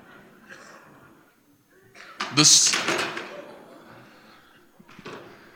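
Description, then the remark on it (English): A single loud, sharp sneeze from a man bursts out partway through, during a service, a harsh hissing blast that fades quickly, with quieter talking murmuring before and after it. “Bless you, brother.”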